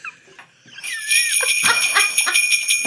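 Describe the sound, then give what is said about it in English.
After a brief quiet start, bells jingle with bright, sustained ringing tones and a steady pattern of shaken clusters, fairly loud and with no one talking. “Some jingle bells to break the tension.”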